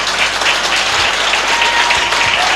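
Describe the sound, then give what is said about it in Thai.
Loud, sustained applause from a crowd for an Amway platinum businesswoman: dense, steady clapping that fills the whole stretch without pause, a bright hissing roar of many hands with no voices standing out. “เสียงปรบมือดังๆเลยครับ”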